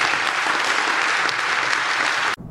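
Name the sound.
warm audience applause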